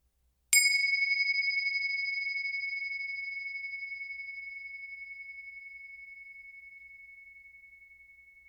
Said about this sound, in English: First, let's settle in, as we always do, with the sound of the bells.